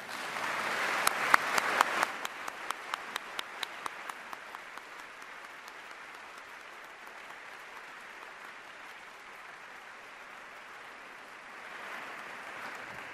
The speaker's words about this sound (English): Just concluded a meeting on campus the last 2 days, and they are demonstrating their commitment to fostering academic excellence by attending Honors Day in academic garb. I invite you to thank them for their service with a round of applause.